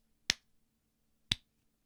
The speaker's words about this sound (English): And I'm going to give you a slow hand clap.